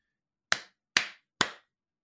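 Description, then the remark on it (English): Three sharp, crisp hand claps made to sync a recording, evenly spaced about half a second apart, each with a short bright decay, with silence around them. “Clap.”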